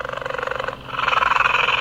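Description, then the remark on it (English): A phone ringtone of a cheetah purring: a fast, steady, rumbling pulse, heard alone and moderately loud, with a brief dip in the middle before the purr resumes slightly stronger. “Even her phone has a ringtone of a cheetah purring.”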